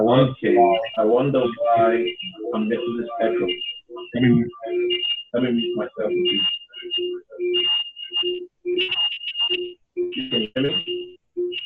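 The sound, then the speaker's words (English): Thin, phone-quality call audio in which a voice comes back as a garbled, warbling echo, repeating in choppy bursts with ringing tonal artifacts for the whole stretch. “I wonder why I'm getting this echo.”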